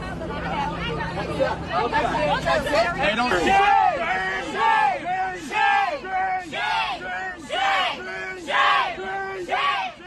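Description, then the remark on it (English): A crowd of pro-Palestinian demonstrators on the Harvard University campus, surrounding a Jewish student, chants "shame" over and over in a steady, rhythmic cadence, loud, with a hubbub of overlapping voices and shouts underneath. “Troubling video footage showing a Jewish Harvard University student being attacked aggressively, mobbed, if you will, by pro-Palestinian demonstrators on the Ivy League campus, screaming, "Shame, shame, shame."”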